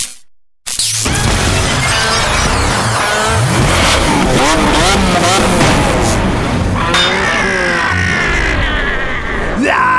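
After a brief silence, a car engine roars in loud, revving hard with rising and falling pitch as it pulls up, amid a dense wash of mechanical noise.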